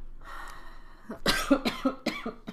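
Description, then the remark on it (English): A burst of harsh coughing: five or six rapid hacking coughs in a row, following a second of quiet background hum. No one speaks. “And you still have this cough. And I still have this cough.”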